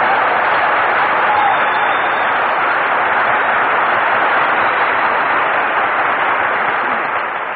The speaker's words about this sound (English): Say, Phil, why is it every time we broadcast from a new place, you always make your entrance by asking for applause? Why don't you let the audience decide whether they want to give you a hand or not?